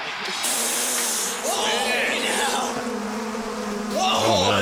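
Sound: swarm of bees buzzing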